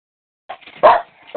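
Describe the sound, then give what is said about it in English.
A dog barks in a few short, sharp bursts, the loudest in the middle, with no talking over it. “I've got a dog bark, and I'd like to ask a question.”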